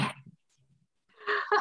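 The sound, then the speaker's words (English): A dog in the room makes short snorting, sneeze-like noises: a sharp burst, a quiet pause, then a longer huffing snort. No one speaks. “My dog is in the room as well, don't worry.”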